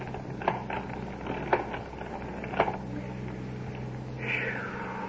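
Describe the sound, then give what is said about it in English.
Rusty creaking from a hand-cranked ice cream freezer in full operation on a back porch, a few scratchy squeaks spaced about a second apart over a steady low hum, with a brief higher squeal near the end. “You hear that rusty creaking?”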